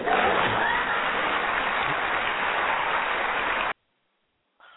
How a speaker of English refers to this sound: Well, I think the applause would be funny at the end there if it weren't so sad.